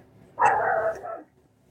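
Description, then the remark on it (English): A dog gives one loud, drawn-out bark lasting under a second, with near silence before and after and no voices present. “There's my dog again.”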